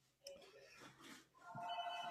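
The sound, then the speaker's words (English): A landline house phone rings with a steady electronic trill that starts partway through, following a brief burst of rustling background noise. “And so this is a point in the call where someone says, "Hey, you still have a house phone?"”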